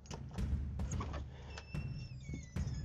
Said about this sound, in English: Unlock the guard shack door